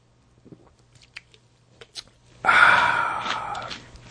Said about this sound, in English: Wait, got to take a drink now.